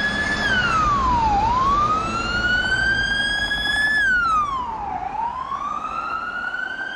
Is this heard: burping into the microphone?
no